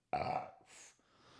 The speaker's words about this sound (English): Sorry, I had to burp.